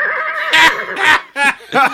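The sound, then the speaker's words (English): A horse whinnies loudly, a shrill neigh breaking into several quavering bursts over about two seconds, with no talking over it. “This is more like a Norse horse, of course”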